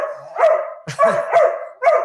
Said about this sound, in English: There could be barking in the background.